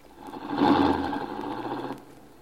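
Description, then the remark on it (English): A car engine hums and rumbles as the car is driven up to the house, swelling quickly to a steady, buzzy drone that holds for a couple of seconds before cutting off. No one speaks. “Eckner, can you drive the car up to the house?”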